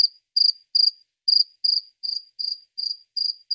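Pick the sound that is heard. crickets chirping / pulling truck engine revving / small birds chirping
crickets chirping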